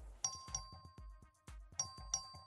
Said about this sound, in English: Ring the bell.